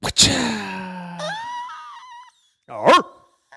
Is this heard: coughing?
no